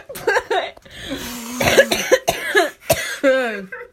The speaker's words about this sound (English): But yeah, that cough right there, bag of bees, believe it or not.